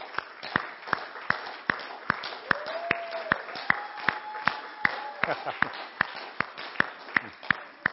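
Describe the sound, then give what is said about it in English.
A church audience claps in steady unison to release the children to go up to class, a brisk even beat of about two to three claps per second, with a faint sustained voice-like tone rising briefly beneath the rhythm. “So we're actually having class right now, so we're be clapping to release the kids to go up.”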